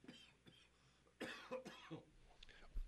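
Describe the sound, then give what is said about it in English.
A man's few harsh, throaty morning coughs come in quick bursts, fairly loud, with a little throat clearing between them and no talking. “I still get this stupid cough.”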